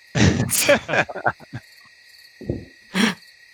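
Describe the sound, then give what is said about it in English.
A steady, continuous chorus of crickets chirping hums through the whole scene, with several loud, voice-like calls and hoots bursting over it. “And yet we can hear crickets.”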